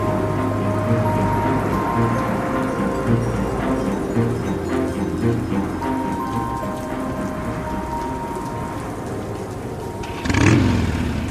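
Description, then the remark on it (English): Heavy, steady rain pours down while a low, droning engine hum holds underneath, like a motorcycle riding through a downpour as the wind picks up and buffets the bike. Near the end, a louder rushing burst swells briefly. “Added to the downpour was the fact that the wind was picking up and buffering the bike from side to side.”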